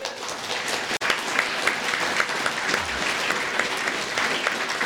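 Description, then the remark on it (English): Sustained audience applause given as a round of applause for the speaker's mother, who is present: a dense, steady wash of many hands clapping at an even loudness for several seconds, with a brief dropout near the start and no talking over it. “So I just want you all, please, for me, to give my mum, who's here, a massive round of applause.”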